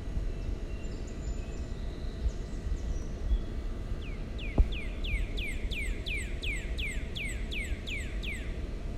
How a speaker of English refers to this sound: I'm recording from my apartment in Manhattan. Yes, New York City. And the only sounds we can hear are birds chirping.